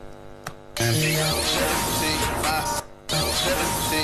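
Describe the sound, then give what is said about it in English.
A loud crash hit sample, placed after a riser while producing a song, slams in and opens into a dense, hissing wash of white noise over the song's musical backing, cuts out briefly near the end, then bursts back in. “And now we need a hit here.”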